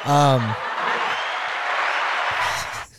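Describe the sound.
After a brief voice at the start, a group bursts into steady, fairly loud clapping for the speaker's assistant that carries on for a couple of seconds and then cuts off abruptly into silence.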